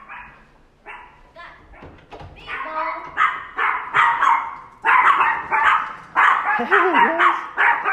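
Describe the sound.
Dogs bark and whimper excitedly, greeting a visitor in the hallway of a house in downtown Los Angeles, a busy run of overlapping yaps and whines that grows louder and keeps going for several seconds, with a person's voice mixed in.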